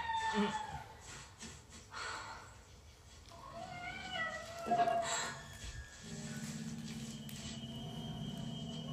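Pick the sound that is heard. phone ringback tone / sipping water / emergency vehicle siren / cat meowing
cat meowing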